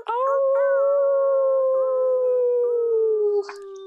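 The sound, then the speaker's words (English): A person imitates a wolf howl: one long, loud, steady note held for several seconds, sagging slightly in pitch at the end, followed by a brief noisy rustle. “Let's end it off just with one more wolf owl.”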